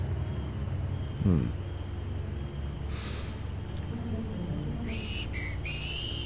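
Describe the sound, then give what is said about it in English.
A man whistles a tune, a few short, thin notes over a steady low background rumble, with a brief breathy snort earlier and soft rustling bursts in between. “He smiled, whistled a tune, very deliberately blew a smoke ring into the air.”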